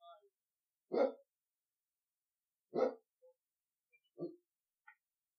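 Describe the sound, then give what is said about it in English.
A dog barks three times in separate, evenly spaced single barks, each short and sharp, at moderate volume with quiet gaps in between. “Barks.”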